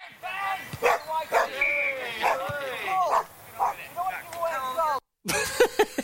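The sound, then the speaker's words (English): A dog running onto a football pitch during play barks and yelps excitedly in quick, uneven bursts, mixed with high-pitched whining cries, fairly loud, with a brief silent gap before a final flurry. “That a dog running on this fucking play, is it?”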